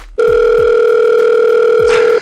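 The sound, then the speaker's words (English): A loud, steady electronic telephone tone drones unbroken for about two seconds, the kind heard when a call is rejected, then cuts off abruptly. No one speaks. “I do this to you, and I get a rejection.”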